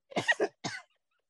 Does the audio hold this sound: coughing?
yes